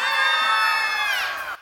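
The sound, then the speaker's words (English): A burst of children screaming together in a sung children's rhyme at the line about seeing a crocodile, loud and high-pitched, holding steady for over a second before trailing off abruptly. “If you see a crocodile, don't forget to scream.”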